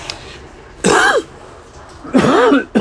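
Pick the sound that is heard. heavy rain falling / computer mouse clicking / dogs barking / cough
cough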